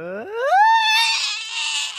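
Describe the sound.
A voice, trying to go as high as it can, slides steeply upward into a strained, very high squeal and holds it for about two seconds, sounding like a goose honk, loud and raspy with no words.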